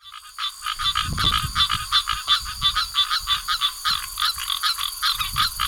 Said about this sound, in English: If you're in Delaware or Maryland and south on the coast, it might just be some green tree frogs talking to each other.